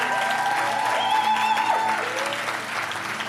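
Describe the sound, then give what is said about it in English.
An audience claps together to honor its leaders in steady, sustained applause that stays loud throughout, with a few faint tonal sounds like music or feedback ringing underneath. “Can we clap and honor them one more time?”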